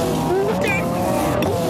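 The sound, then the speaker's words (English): Windshield wipers swish across the glass twice in steady rhythm, each sweep a short soft scrape, over a continuous droning vehicle engine hum, as the wipers clear a large pepperoni pizza off the windshield. “I got to put the windshield wipers on.”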